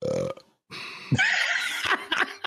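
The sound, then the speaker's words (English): A loud, long and croaky burp, rumbling on for over a second with a few rough bursts near the end, preceded by a short vocal sound and a brief pause. “I didn't burp. I've yet to burp on the show.”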